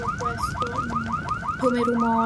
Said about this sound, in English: I remember in the background the sound of sirens, because we had a smoke alarm in the facility in the plant. Of course, the alarm started going off like crazy all night long, so I remember this noise.